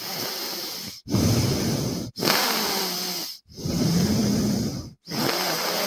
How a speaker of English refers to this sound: breathing out of his nose